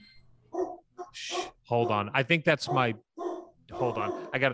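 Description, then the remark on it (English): A dog barks in a quick run of sharp, excited barks and yips as the dog bather arrives, with a short burst of rustling noise before them and a few more barks trailing after. “The dog bather is here.”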